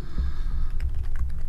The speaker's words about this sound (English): What are you typing? Nothing.